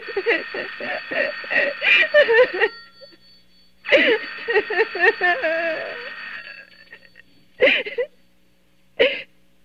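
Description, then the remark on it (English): An old-style telephone rings in repeated bright, rattling bursts, two long rings followed by shorter ones with pauses between, fairly loud with no one speaking. “Oh, let it ring. Let it go on ringing. It's a trick of some kind. And I won't answer it.”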